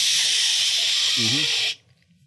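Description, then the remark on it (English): A fire extinguisher made specifically for electrical fires is sprayed at a smoking fire in a box, a loud, steady, high hiss for nearly two seconds, then cuts off abruptly. A brief low vocal murmur is heard partway through the spray. “I grab the fire extinguisher that's built specifically for electrical fires.”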